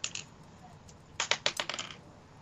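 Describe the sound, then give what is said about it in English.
A twenty-sided die, rolled for an attack roll in a tabletop game, clatters across a tabletop, a quick burst of sharp plastic clicks that bounce and tumble before settling, fairly crisp. “Give me an attack roll, please.”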